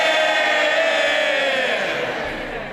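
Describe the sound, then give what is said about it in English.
A loud, sustained roar from a large crowd in a parliamentary chamber as the Leader of the Opposition, Keir Starmer, is introduced, a dense mix of many voices that could be cheers or boos, holding steady before easing slightly at the end. “I couldn't make out whether that introductory noise was cheers or boos.”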